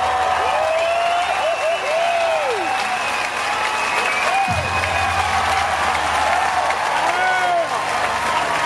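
A large crowd applauds loudly and continuously, dense clapping filling the whole stretch, with scattered whistles and cheers rising above it and a low rumble entering partway through.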